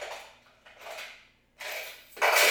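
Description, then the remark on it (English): Keys are dropped by everyone present into a bucket passed around among them, in a series of four metallic jangling clatters, with the last one landing loudest. No voices are heard. “I'm going to pass around this bucket. Everyone drop your keys in.”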